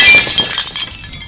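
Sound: window glass shattering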